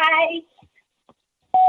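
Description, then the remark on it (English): A brief burst of a recorded voicemail greeting for a plumber trails into silence, then a single loud, steady mid-pitched answering-machine beep sounds and holds until the end. “Please leave your name, number, and message after the beep.”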